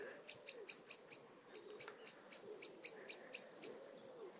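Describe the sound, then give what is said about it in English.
Lots of pigeons coo in soft, low, rounded phrases that rise and fall a few times, while thin, rapid high chirps from small birds tick steadily over the top. “And there are cockerels and lots of pigeons, but not that great chorus of song.”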